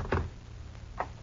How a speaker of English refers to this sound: Okay, slowly you open the door.